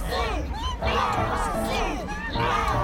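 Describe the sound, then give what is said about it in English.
A large crowd of fish, underwater mammals and one bird chants together at a giant whale concert venue under the ocean, in loud, rhythmic bursts, many overlapping voices rising and falling in a steady cadence, continuous throughout. “Wow, this crowd is huge. There are so many fish and underwater mammals, and somehow one bird. Listen, they're chanting something.”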